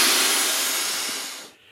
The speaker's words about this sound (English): Here's a boat being deflated on Loch Ness.